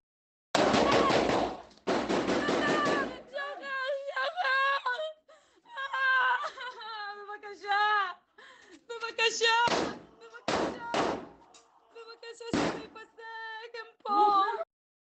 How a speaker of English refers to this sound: Then she sends us an audio recording. You hear a lot of shooting and screaming. She sends it to us.